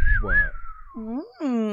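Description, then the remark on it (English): Someone vocally imitates the famous Wild West whistle sound effect, the Clint Eastwood one from The Good, the Bad and the Ugly: a thin, high whistled tone that dips and rises, then a few swooping, nasal sung notes, all fairly loud and alone. “That's a Wild West sound effect. Is it the whistle?”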